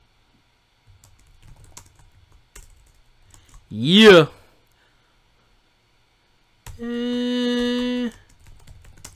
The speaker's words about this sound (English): So, hold on. Typing about the … deal.